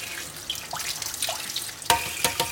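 Tap water gushes steadily into a sink through the layers of leeks, their rough outer layers removed, to clean them, fairly loud, with a few sharp knocks and clatters near the end as they are handled. No one speaks.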